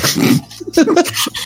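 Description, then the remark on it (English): A single loud, breathy sneeze bursts out at the start, followed by a few short, low voiced grunts and snuffles before it trails off. “Sorry, I sneezed.”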